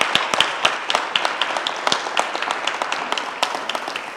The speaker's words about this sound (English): Can we give him a clap offering? He is worthy.